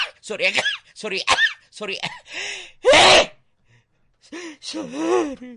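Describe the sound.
Several quick, breathy vocal gasps build up before one loud, explosive sneeze. After a short pause, a voice continues with more breathy sounds.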